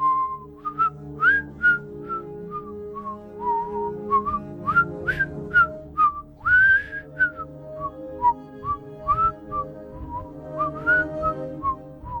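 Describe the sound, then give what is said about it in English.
A person whistles a wandering, melodic tune behind a closed upstairs office door at the City Action News station, with steady sustained notes and quick upward slides, continuing for about twelve seconds with no talking. “And you hear whistling coming from the other side.”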